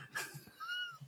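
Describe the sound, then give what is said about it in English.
A domestic cat vocalizes: two short, soft meow-like cries in quick succession, with a faint low rumbling purr underneath and no talking. “It's a cat.”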